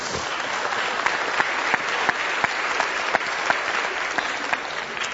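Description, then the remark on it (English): The Ebenezer Church audience claps together in steady, dense applause for raising money to help care for poor women and children, with a few louder individual claps standing out at a fairly even pace. No voices can be heard over the clapping. “This week I had we can clap for that.”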